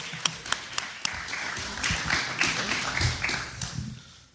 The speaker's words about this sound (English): And a round of applause for Mark.